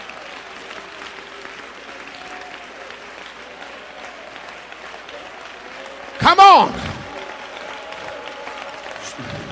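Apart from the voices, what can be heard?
audience hand clapping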